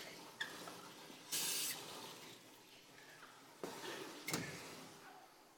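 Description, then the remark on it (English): Water runs steadily into a baptismal tank for a baptism, the water accidentally left on, with a constant rushing hiss, briefly surging louder in a spray-like burst, while a few sharp clicks and knocks punctuate the flow. No one speaks. “We forgot to turn off the water for the baptism.”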